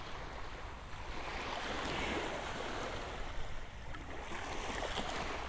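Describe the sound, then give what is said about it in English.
Steady ocean waves wash and hiss continuously, a broad rushing surf sound with gentle swells, moderately loud, with no voices present. “Listen to the waves.”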